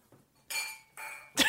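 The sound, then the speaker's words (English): Wine glasses clink together three times in quick succession as another glass is grabbed, each strike bright and ringing with sustained high overtones, the last one sharper and louder, with no talking. “whenever Christine gets a fly in her wine glass, she just grabs another one. Hear them clinking?”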